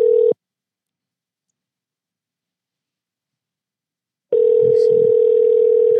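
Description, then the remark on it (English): An outgoing phone call's ringing tone: a steady electronic tone cuts off, followed by about four seconds of silence, then the tone starts up again loud and clear, with no one speaking. “We're going to see if my OGs are answering the phone here for me.”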